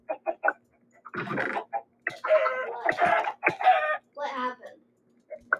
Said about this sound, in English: What the heck, bro? Was that you? What was that? That was a chicken bomb.